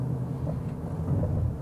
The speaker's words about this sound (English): Hold on a second. There's two motorcycles there.